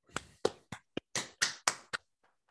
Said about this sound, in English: And let's clap it up.